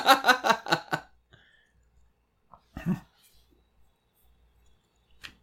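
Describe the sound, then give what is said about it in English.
A puppy lets out a quick run of five high yaps in the first second, then goes quiet except for a single harsher bark and a faint whimper-like squeak. “My puppy found the growing formula.”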